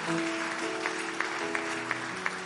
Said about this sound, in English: If you are clapping, give me a hard clapping.